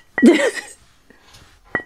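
Two bright glass clinks in a toast, each with a short ringing tone, separated by about a second and a half, with a brief voiced exclamation just after the first one.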